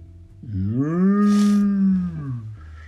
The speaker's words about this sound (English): "Yes," mooed the cows.